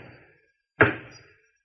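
A single heavy knock as a heavy metal door knocker is lifted and let fall against a massive oak door at a home's main entrance, sharp, with a short resonant ring fading in the quiet afterward.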